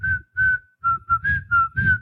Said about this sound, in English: And as he is, like, sandboarding across the dunes, we hear the famous whistle tune of the movie, the...